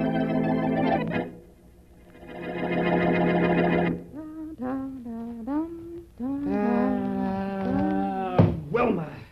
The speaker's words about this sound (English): Well, you cut out that humming. I'm sorry. I didn't know it was annoying you. Well, it is.